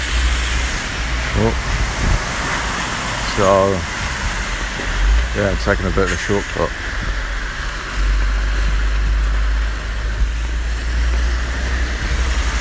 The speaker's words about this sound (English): Good morning. I'm about to take a bit of a detour today. It's like torrential rain at the minute.